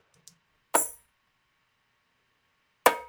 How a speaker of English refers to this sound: So I'm just going to play it dry. Bunch of layers of tambourines here.